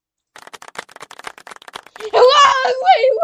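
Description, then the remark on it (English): A quick, steady run of light hand claps, about a dozen sharp pats, followed by a loud voice breaking in and talking over the end. “I was putting like the clap to like.”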